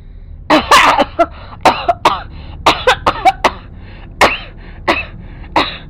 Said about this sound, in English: Tammy sat up in bed, simultaneously coughing and gasping for air